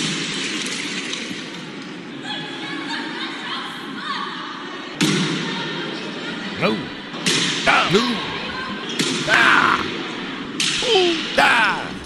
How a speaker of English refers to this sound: filmed losing her cool on a robot receptionist and smashing it to pieces in public with a wooden plank. This robot's used to check people into a hospital. And despite being smashed multiple times, at the end of the incident, it was still working.